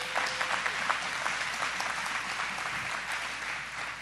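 An audience claps steadily for the news that numbers citywide are down 15.5% year to date, a dense, even patter of many hands that holds at a fairly constant level for a few seconds without fading.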